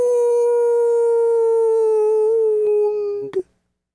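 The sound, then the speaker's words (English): A single long, mournful dog howl holds a steady tone for about three seconds, sagging slightly in pitch before breaking off abruptly. It sounds loud, with no talking. “And then he howled like the north wind.”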